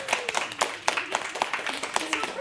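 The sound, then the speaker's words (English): A brief round of applause: a steady patter of sharp, crisp hand claps at an uneven, quick rhythm, with faint voices murmuring underneath. “Big round of applause,”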